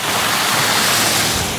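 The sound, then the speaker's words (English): Passing traffic splashes through slush on a road in a loud, continuous rushing hiss, steady throughout, with no voices. “Oh, we're getting splashed all over the place.”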